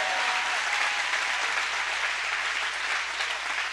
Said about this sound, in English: Clap your hands like you believe He's a happy God.